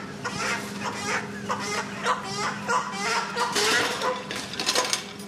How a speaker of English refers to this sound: Dozens of stacked metal cages line the hall of Manhattan Live Chicken Market, filled with red soup birds, white broilers, turkeys and ducks, pheasants and pigeons.